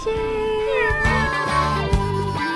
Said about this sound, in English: And we're joined by the cat.